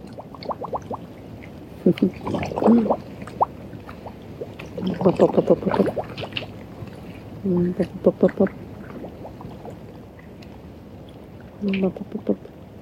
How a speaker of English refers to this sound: Bubbles, releasing of energy.